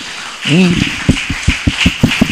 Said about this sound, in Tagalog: Yung palakpak nyo, parang hindi nyo tanggap yung sarili nyo.